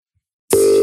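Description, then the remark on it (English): After a half-second of silence, a loud, steady telephone dial tone switches on abruptly and holds unbroken to the end, with no voices present. “No, cut the phone 1 sec.”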